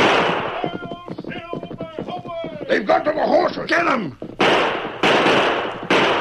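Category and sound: impact, gunfire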